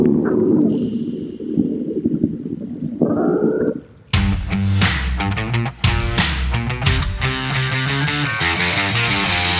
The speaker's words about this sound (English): The sound of Doran's stomach growling echoes throughout the cavern.